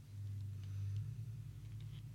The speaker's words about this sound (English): Ignore the truck